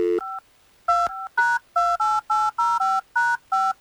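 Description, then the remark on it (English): A phone number being punched in to call a woman: about ten crisp touch-tone beeps in quick, slightly uneven succession, loud, with no one speaking. “Let's get her on the phone and see if we can find out.”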